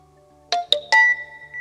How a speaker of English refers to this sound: The security interface identifies your iris pattern and the door chimes open.